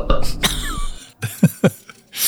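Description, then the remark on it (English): A gravelly belch rumbles at first, followed by several short, throaty bursts and a breathy rasp at the end, with no talking. “Okay, number two, was that a belch?”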